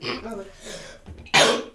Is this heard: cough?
yes